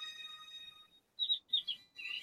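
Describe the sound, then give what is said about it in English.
A shrill, bird-like crowing cry of the Pokémon Dodrio: a sustained high warbling note followed by several sharp, squawking bursts in quick succession, fairly loud, with no talking. “as the Dodrio crows.”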